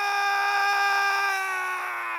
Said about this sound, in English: He suddenly heard a commotion back from the camp. Then there were screams.